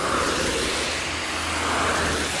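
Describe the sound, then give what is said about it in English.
Steady roar of traffic on a busy road in the rain, with lots of cars rushing past from both sides in a continuous wash of engine and tyre noise, fairly loud and with no voices. “And then cars coming from the other side. Oh, lots of cars.”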